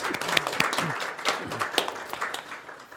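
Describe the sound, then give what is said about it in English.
A crowd applauds steadily for the children who helped behind the scenes with props, chairs and the mic, a dense patter of many hands clapping at once, with faint voices and cheers mixed underneath, holding fairly even and then easing slightly toward the end. “Should give them a round of applause.”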